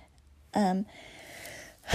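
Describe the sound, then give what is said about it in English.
A short voiced yawn: a loud, tonal sound that slides downward in pitch for about a quarter second, then trails into a long, soft, breathy exhale. “Oh, gosh, the yawns.”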